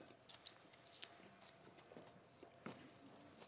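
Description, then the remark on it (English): Quiet chewing of a smoky pizza salad with jalapeno, with soft wet bites and a few sharper crunchy snaps scattered irregularly over a few seconds, no talking. “Now, this is not, I think you need an iceberg crunch to it, but.”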